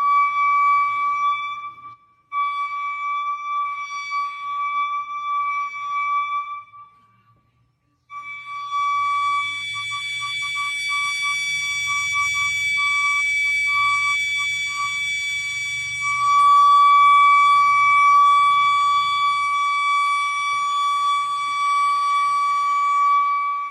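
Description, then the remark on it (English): An unexplained noise heard by residents of Forest Grove in February 2016: a loud, piercing mechanical scream, a steady high-pitched tone rich in harsh overtones. It cuts out briefly twice early on, then drones on unbroken and swells louder near the end, with no voices. “The Forest Grove sound was described by the Oregonian Daily News as a mechanical scream.”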